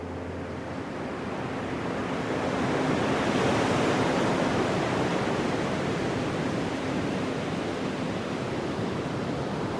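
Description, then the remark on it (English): Steady rushing ocean surf fills the scene, a broad, continuous wash of waves that swells slightly partway through, with no voices present. “At the edges of the land, at the edges of the world, you can see the ocean.”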